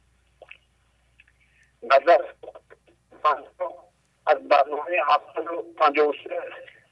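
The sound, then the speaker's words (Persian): A thin, tinny voice of a caller speaking on a mobile phone keeps breaking up, arriving in short choppy bursts separated by dropouts of silence, the words garbled and unintelligible. “ولی قطع وصل میشه که صداتون، با موبایل صحبت میکنید؟”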